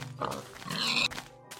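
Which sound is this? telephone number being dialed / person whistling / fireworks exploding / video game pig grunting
video game pig grunting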